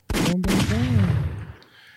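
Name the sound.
gunshot sound effects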